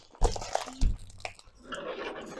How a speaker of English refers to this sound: You have scissors. Like, I'm trying to rip this bag open. This bag giving me like more problems than need be.